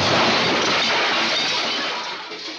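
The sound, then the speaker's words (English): A door is smashed open with a loud, sustained crash of splintering and rattling debris that holds steady for a couple of seconds, then slowly tapers off. No voices. “Gotta bust through the door.”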